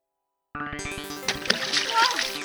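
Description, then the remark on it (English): A sudden crash gives way to loud, sustained water splashing and spilling as a water tank in an office is knocked over by something huge being brought in, lasting about two seconds after a moment of silence. “Oh, my water tank!”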